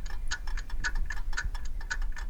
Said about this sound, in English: Inside the darkened shop, we dance slow, sad tangos. The clocks tick in unison, and ghosts return for one last turn around the floor.